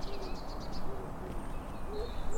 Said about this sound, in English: All doves and pigeons sound good.